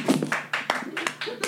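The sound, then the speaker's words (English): Men in the audience clap briefly, a scattered patter of handclaps over about a second and a half, mixed with voices and murmuring. “I don't mean to be like heteronormative or whatever, but for the men in the room who make a round of applause if you haven't fucked someone because they're a bad kisser.”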